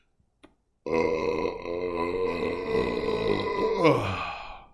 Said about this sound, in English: You're welcome. That was a big burp. I apologize. But I bet that sounded good.